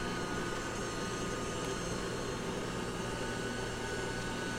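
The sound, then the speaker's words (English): A robot vacuum in spiral spot cleaning mode, spinning around in a circle, runs with a steady, droning motor whir and a faint hum, holding an even loudness throughout without pauses, with no one talking. “And I don't know if you can hear that, but that's the vacuum.”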